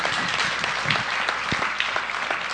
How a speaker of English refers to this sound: Clap real good for God. Amen.